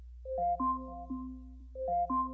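An Amazon Echo alarm goes off, playing a short melodic chime of bright, ringing tones that repeats twice over a steady low hum, with no one talking.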